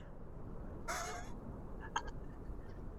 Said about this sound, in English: That owl sounds weird. But it's only poisoned for an hour, so it won't be long.